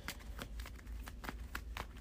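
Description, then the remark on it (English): Steady riffling of playing cards being shuffled back into a deck during a card game, a rapid series of crisp papery flicks over about two seconds with no voices. “We'll shuffle the rest back.”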